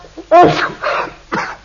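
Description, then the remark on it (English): A quick run of three loud sneezes after taking snuff, the first a sharp voiced burst and the next two slightly softer, separated by brief pauses. “Bless you, my dear fellow.”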